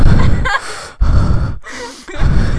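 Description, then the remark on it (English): Three loud nasal bursts in quick succession, allergy-season snorts or stifled sneezes, each a rough, breathy rush of air separated by brief pauses, with no talking. “Oh, sorry, it's allergy season. Super embarrassing.”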